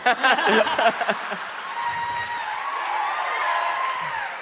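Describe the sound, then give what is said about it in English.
A crowd bursts into applause and cheering, starting with a few sharp, louder bursts and then settling into a steady, dense roar that holds at an even level to the end. “This is how democracy dies, to thunderous applause.”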